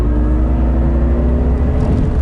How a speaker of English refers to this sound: You don't want to hear fake noise. Yeah, you're hearing road noise.